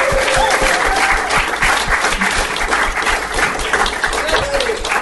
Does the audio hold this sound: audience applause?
yes